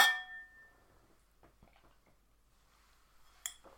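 Glasses clink together in a toast during a taste test of a fruity peach and passion fruit drink with triple sec, a bright ring that fades over about a second, followed by quiet shuffling and a second brief, sharper clink near the end.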